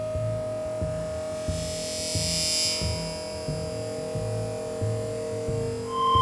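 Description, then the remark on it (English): A drone belonging to Hallowell hovers in the sky with a steady electric hum, a sustained tone over a low throbbing pulse that repeats about every half second and a brief hissing swell partway through. No voices. “There's something in the sky over there. I think it might be a drone.”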